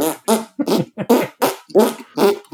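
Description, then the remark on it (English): A person blows raspberry fart noises with the lips, about seven quick buzzy bursts in a steady rhythm, loud, with no talking. “make fart noises.”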